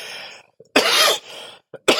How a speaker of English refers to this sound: Oh God. My cough today is a little bit more, a little bit more, aggressive right now. Oh God. Today was last 2 days have been a little bit more rough with my cough, is what I've noticed. So it's a little bit more harder, a little bit more aggressive.